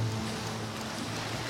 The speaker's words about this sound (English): Now let's cue the ocean sounds.